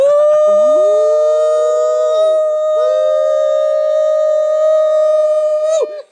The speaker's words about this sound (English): You know how to call the Hogs? Come on, you know how to call the Hogs?